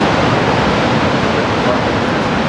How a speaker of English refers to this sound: The slide came down just west of Clinton last week, creating a new waterfall and raging rapids at a narrow part of the river.